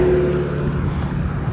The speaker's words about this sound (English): I'm walking, there's cars whizzing by me.